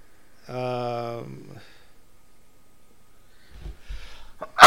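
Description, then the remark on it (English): A single sneeze, a voiced drawn-in "ahh" breaking into a short, sharp burst, followed by quiet and then a few soft rustling bumps. “Bless me. Bless you.”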